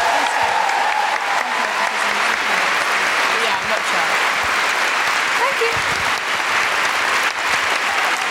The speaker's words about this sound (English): Big round of applause for Sian Clifford.